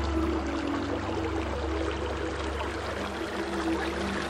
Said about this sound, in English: Water. Huh. Shallow.